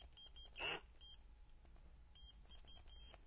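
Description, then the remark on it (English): A power drill, without drill bits, whirs in short on-off bursts of uneven length like Morse code, a longer loud burst first, then a quick rhythmic string of brief high-pitched pulses with quiet gaps between. “I can send Morse code with my power drill.”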